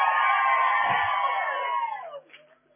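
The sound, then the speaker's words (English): A crowd of people shouting and cheering together as a shout to the Lord, a loud, sustained roar that holds for about two seconds, then fades quickly as a few scattered voices trail off. “Hey, look at how they are shouting about it.”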